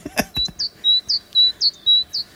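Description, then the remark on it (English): A great tit sings its bright, repeated two-note phrase, a sharp high note then a flatter whistle, about four times in a steady see-saw rhythm, clear after a brief click. “Great Tit. Yes!”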